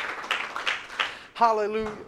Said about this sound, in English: Somebody clap your hands unto the Lord if you believe it.